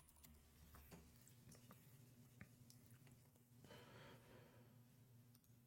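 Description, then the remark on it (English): Small clicks and rustling handling noises, like a wristwatch being fastened, with a few sharp ticks scattered over a low steady hum. No one speaks. “Sorry, I put my watch on, folks.”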